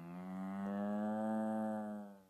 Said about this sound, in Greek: Η αγελάδα.